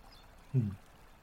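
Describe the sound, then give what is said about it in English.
A single brief, muffled low slosh, like a large volume of water shifting inside an enclosed container, rising out of near silence and fading quickly. “You can't identify it this way at first, but it's the sound maybe of, like, water. Large quantities of water moving around inside of something.”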